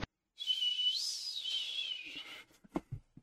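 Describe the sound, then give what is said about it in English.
A person whistles one long, sustained note lasting about two seconds, sliding up in pitch and then gently back down, followed by a few brief clicks and soft knocks. “Sounds like whistling too.”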